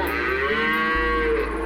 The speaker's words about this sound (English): Or a herd of cows.